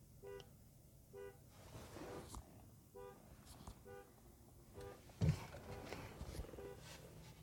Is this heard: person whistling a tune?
no